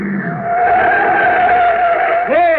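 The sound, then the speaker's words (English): A car drives out onto a rocket launch field and skids hard to a stop, tires squealing in a loud, sustained screech that holds steady for a couple of seconds before bending sharply downward at the end. “Hey, what's the car doing? He's coming right out on the field.”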